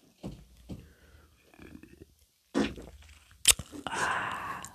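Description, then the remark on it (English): A loud, raspy fart, let out deliberately with one butt cheek lifted, followed by a short sharp burst and a sustained breathy hiss, with some soft low rustling and handling noises beforehand. “You farted during my ASMR. And that was deliberate because you even lifted up your butt cheek to give it room.”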